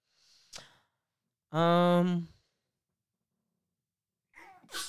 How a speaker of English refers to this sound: Excuse me. I'm always sneezing on this podcast.